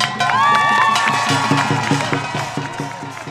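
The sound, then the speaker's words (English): A rally crowd, with Asians for Black Lives signs and Korean drummers present, cheers loudly in reaction to a man's speech. High whoops and shouts rise above a dense roar of voices, with rapid clapping that stays steady before the noise starts to ease off. “It was clear from the crowd's reaction that what he said resonated with a ton of people.”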